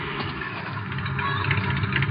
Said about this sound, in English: There's a car coming. Could be them.